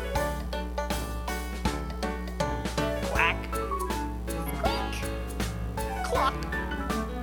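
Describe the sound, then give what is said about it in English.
Several nasal duck quacks pop out in short bursts over a steady, bouncy backing tune of a farm animal song, spaced a second or so apart and fairly loud against the music. “ducks on the farm say quack, quack, quack.”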